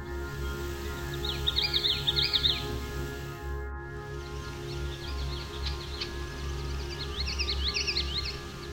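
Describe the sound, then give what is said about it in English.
A common yellowthroat sings two bouts of quick, rolling repeated "witchity" phrases, one near the start and one near the end, over a steady low hum, with no voices. “We also heard the common yellowthroat song, which is often described as sounding like witchity, witchity, witchy.”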